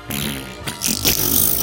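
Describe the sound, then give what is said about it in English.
A loud, drawn-out fart noise, a low buzzy rumble that breaks into a raspier, sputtering blast toward the end, lasting well over a second with no talking. “So you let out a big fart.”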